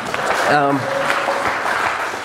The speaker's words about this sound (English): Y'all can clap for them too if you want to.